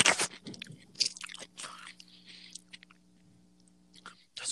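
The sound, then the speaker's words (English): Wet crunching and chewing of a pickle, with several juicy bursts and smacking sounds in quick succession, loud with no talking. “That's about a good 2 more bites left of this pickle.”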